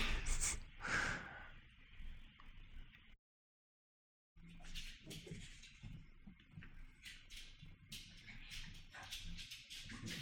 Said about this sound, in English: Sorry, my dogs are like wrestling under my desk. I love it because they're all going at the end of the episode, dog wrestling.